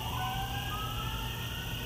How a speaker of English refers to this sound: You just heard some sirens.